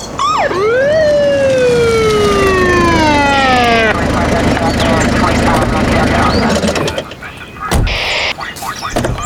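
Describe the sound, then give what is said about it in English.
A police car siren wails loudly, its pitch sweeping up and then gliding down, over a rumbling engine, as the police car approaches with its headlights coming towards the listeners, before giving way to clattering vehicle noise. “I see headlights coming towards us. It's a police car.”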